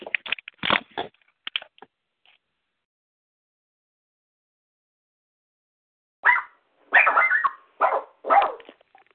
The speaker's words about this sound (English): That was my dog barking.